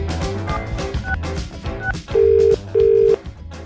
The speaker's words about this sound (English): And I thought it were a porno star ringing me up at this time. Well, hang on, I phone you at this time every week.